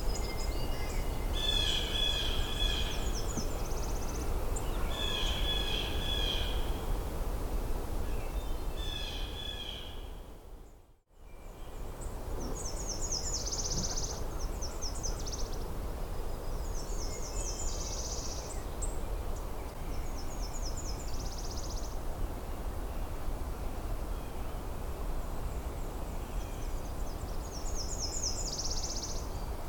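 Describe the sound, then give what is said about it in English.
Blue jay calls ring out in repeated bursts of harsh, nasal notes over a constant rushing background noise, with a brief dropout of sound partway through. “This recording was of a blue jay.”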